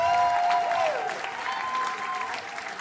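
An audience applauds a performer who has just delivered a report, with dense, steady clapping that holds at a fairly even loudness and eases slightly toward the end, with a few faint whistle-like tones mixed in.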